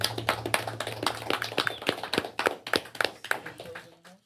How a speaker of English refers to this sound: For this occasion, you know, to celebrate the life and homegoing of Adrian, a.k.a. Hangaround. Let's just give a round of applause for that. I appreciate it, you know.